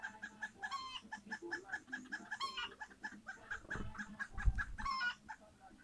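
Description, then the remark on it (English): A hen clucks repeatedly in a rising, insistent series of calls, close by, with other chickens murmuring and faint farmyard rustling and thumps in the background. “Maybe that's an egg laying sound.”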